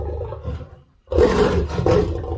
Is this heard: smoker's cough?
no